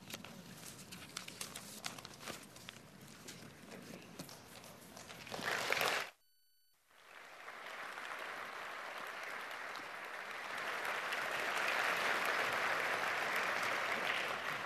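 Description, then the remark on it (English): An audience applauds with dense, crackling clapping that breaks off briefly into silence, then returns as a steady, full wash of applause that swells slightly louder toward the end, with no talking. “They never clap when I'm done.”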